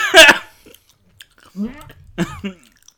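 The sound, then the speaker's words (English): A sharp, breathy burst, then soft chewing of a canned-dog-food-flavored jelly bean mixed with low, throaty groans and a gagging sound, in a few short bursts with pauses between. “I have to remind myself it's just a jelly bean.”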